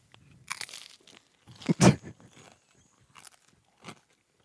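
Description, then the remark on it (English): Crackers from a Calabrese and Asiago Lunchable snack pack crunch in several irregular, crisp bites, with one loud, sharp crunch in the middle and a few softer chewing crackles trailing after. No one speaks. “So he brought a Lunchable naturally.”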